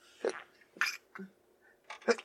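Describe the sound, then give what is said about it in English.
Three quick, soft sneezes in a row, each a short breathy burst with gaps between them, fairly quiet and with no talking over them. “Bless you.”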